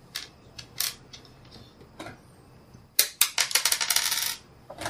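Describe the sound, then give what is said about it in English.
Dice clatter and tumble across a tabletop as damage dice are rolled in a tabletop game, a few scattered clicks first, then a rapid burst of rattling impacts that settles into quiet, fairly loud. “So you double your damage die. Dice.”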